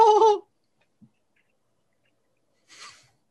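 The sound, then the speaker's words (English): A voice imitates the call of a bird named Inqua coming back, one short, loud, squawking cry like a greeting, followed by silence and then a brief, faint, breathy rasp near the end. “And as you begin to make your way back, Inqua, the bird, comes back. It's like, hey, hello, hello, hello.”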